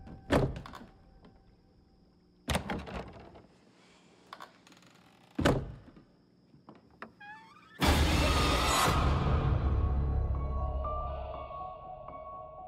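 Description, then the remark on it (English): A closet door thuds shut three times at intervals, heavy, followed by a loud, long crashing rumble that slowly fades out. No one speaks. “Can you close the closet door?”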